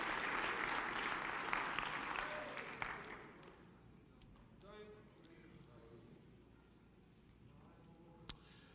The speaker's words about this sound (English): Clap your hands to the Lord one more time as you're seated today.